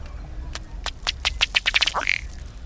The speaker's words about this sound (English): He inflates his neck and faster strikes his chest with his bill. These blows force air through the feathers, causing the water to bubble. The male's display ends with his head and tail jerking forward and a low belching sound.